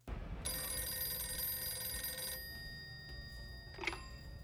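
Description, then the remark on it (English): A telephone bell rings in one long, steady burst of bright metallic trilling, then stops, followed by a short clattering click like a receiver being lifted. No one speaks. “He puts on some clothes, and then the phone rings, and this is what you hear.”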